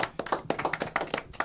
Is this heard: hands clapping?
yes